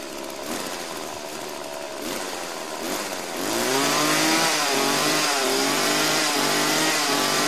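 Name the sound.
chainsaw running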